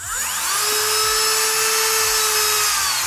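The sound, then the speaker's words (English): A high-pitched Dremel rotary tool whirs steadily for about three seconds, its loud, sustained whine holding nearly constant pitch with no voices. “It's a Dremel.”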